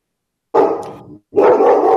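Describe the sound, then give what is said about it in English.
A dog barks twice in quick succession, each bark loud, with a brief pause between them and no voices. “dog believes you. He's got good voice. He's coming through pretty good.”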